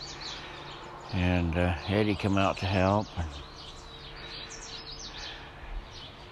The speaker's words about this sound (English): And I just wanted to listen to the birds singing for a minute.